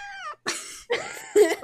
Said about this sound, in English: She has the best meow. Yeah, she's really chatty.